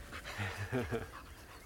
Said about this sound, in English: And the panting of the dog.